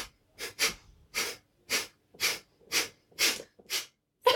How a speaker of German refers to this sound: Und dann können wir alle miteinander atmen und alle zusammen schnaufen.